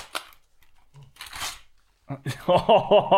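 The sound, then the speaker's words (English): Paper crinkles and tears in a couple of short rustling bursts as a gift, a coloring book bought at a bookstore, is unwrapped, then a voice starts talking and laughing over the end. “open yours now. See how easily I open mine straight away?”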